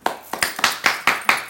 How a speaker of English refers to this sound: Round of applause, man. Those guys over there are doing a great job.